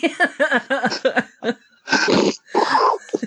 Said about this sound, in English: Oh, you didn't just blow your nose, did you? Yep.